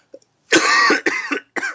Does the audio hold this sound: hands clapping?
no